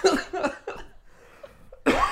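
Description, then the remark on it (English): A loud run of three harsh coughs in quick succession, then a short quiet pause before one more forceful cough. “My coughs take a long time to go away.”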